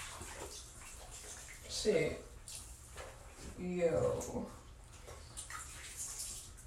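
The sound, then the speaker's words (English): Water sloshes and splashes softly in a bathtub, with a steady wet background and two brief louder swishes while a man mutters a couple of short words. “The only thing I did not do in this tub, I mean do tonight while in the tub, was like normally, you know, I fill this bitch all the way up, but I knew it was late.”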